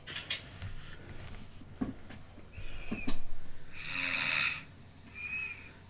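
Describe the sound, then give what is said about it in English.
Soft snoring from a woman who has fallen asleep, with a thin, high whistle riding on each breath, three wheezy pulses that swell and fade, the middle one loudest, with no talking. “She fell asleep.”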